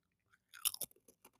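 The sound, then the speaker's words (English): Crisp crunching of Ruffles potato chips being bitten and chewed, a few sharp crackly bites in quick succession followed by softer chewing, with no talking. “ASMR with a bag of cheese. Now you ruffles. Got a crunchy chip.”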